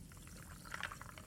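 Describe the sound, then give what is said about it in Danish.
Water pours into a glass in a bar in Leipzig, Germany, on a hot day, in a short, continuous trickle with a brief bright splashing burst near the middle, fairly quiet, with no talking. “Jeg tager lige noget vand eller noget.”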